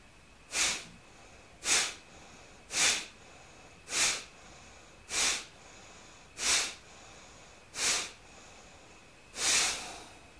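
Eight sharp, hissing breaths at a steady rhythm of about one per second during a pranayama breathing exercise, fairly quiet with no talking; the final breath stretches out a little longer.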